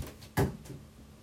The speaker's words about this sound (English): Closing the door.